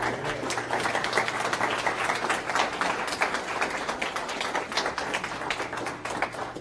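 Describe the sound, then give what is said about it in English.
An audience at the Institute of Catholic Culture applauds to welcome a lecturer, many hands clapping in a dense, crackling wash that holds at an even level for several seconds, with no voices over it. “So give a big round of applause for”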